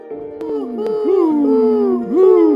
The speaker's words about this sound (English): That is the owl.